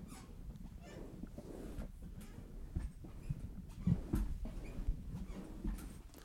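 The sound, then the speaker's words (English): A voice imitates a squeaky chair with a run of creaky, strained squeals and groans over about six seconds, moderately loud, with short bright squeaks breaking through. “listen to my impression of a squeaky chair.”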